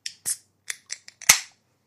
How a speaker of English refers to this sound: So everybody, if you could grab your beer. You know, I gotta just pull it back. There we go. Let's pull it back over here, and let's crack a beer.